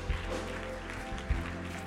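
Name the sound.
audience applauding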